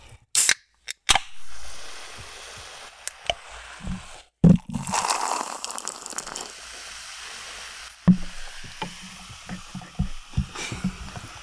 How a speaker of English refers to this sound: They crack it open and pour the Coke into the ice, and you I'm sold.